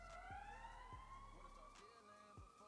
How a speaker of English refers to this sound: Those sirens in the back.